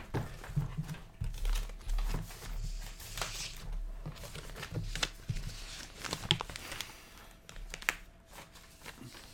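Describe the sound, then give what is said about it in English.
A sheet of paper rustles and crinkles, with irregular crackling bursts and soft scrapes over several seconds, and no one speaking. “Give me another sheet of paper, please.”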